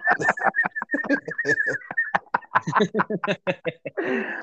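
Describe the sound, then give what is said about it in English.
A person whistles a little bird call, a steady thin tone lasting a couple of seconds, with chattering voices and chuckling mixed in and a breathy burst at the end. “just by doing a little bird whistle.”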